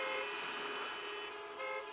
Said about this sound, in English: On the road, traffic is stopped in both directions as a large snapping turtle lumbers across. Car horns blast and drivers are shouting.